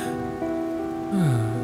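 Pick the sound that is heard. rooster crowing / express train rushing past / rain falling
rain falling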